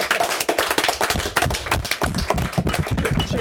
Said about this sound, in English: Wait, a round of applause for us? Yeah.